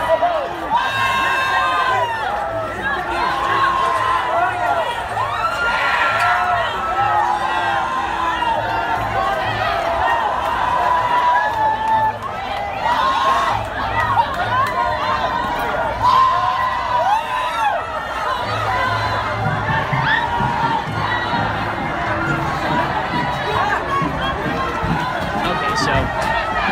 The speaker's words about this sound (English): Bunch of protesters holding Mexican flags storming the barricades that are supposed to protect the people going to this Trump rally